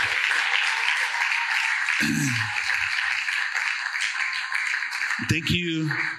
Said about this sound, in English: Hey, mothers, I know you probably just sat down, but stand up. We want to give you a big applause. We love you guys so much. Moms, thank you so much.